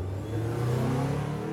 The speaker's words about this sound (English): Olivia lowered her weapon and watched helplessly as Emmett forced Baxter outside, shoved him into the back of a getaway car manned by another person, and drove off.